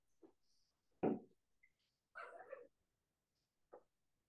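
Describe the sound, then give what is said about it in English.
Dogs in the room make a few separate vocalizations, a sharp bark-like yelp, a longer whining sound and a short final yip, spaced irregularly against a quiet background with no talking. “Those dogs, I tell you.”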